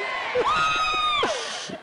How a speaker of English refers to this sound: Men are booing. I'm making some friends and enemies today, all at the same time.